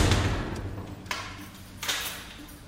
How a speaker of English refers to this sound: He's snoring away on the hard cell bench. The door is slammed shut and another day is over.